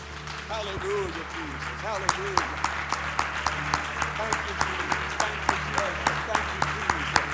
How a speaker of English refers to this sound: In Jesus' name, clap your hands unto the Lord.